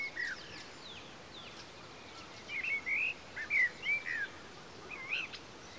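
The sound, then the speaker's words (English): Birds singing outdoors in a tranquil, peaceful location with trees swaying in a gentle breeze, a series of bright chirping phrases and short warbles rising and falling over a steady soft background hiss, fairly quiet. “Tranquil, peaceful, birds singing.”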